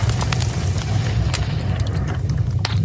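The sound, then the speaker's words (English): A crackling fireplace: irregular sharp pops and snaps scattered over a steady, loud low roar of burning, continuous for the whole stretch with no voices. “Crackling fireplace.”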